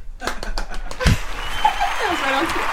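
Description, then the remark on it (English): An applause sound effect: a few sharp separate claps, a heavy thump, then a steady wash of crowd clapping with rising and falling whistle-like cheers over it. “It's still clapping, Stacy, so you're going to have to give it a minute.”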